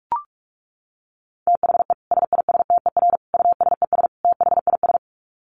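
Fast Morse code at 45 words per minute: a single steady beeping tone keyed on and off in rapid dots and dashes, clear and fairly loud, after a brief click at the start. No voices.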